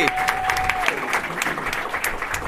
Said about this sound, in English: A round of applause for our wonderful audience volunteer.